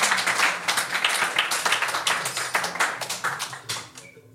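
A crowd applauds with dense, overlapping claps that hold steady for about four seconds and then trail off at the end. No voices are heard over it.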